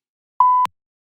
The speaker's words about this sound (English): And for that big silence there, I'm going to put in a couple beeps